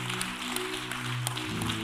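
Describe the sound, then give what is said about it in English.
A crowd claps steadily in praise of God in a dense, continuous wash of hand claps, with a sustained low organ-like chord holding underneath that shifts pitch near the end. “Come on and clap your hands and give him praise.”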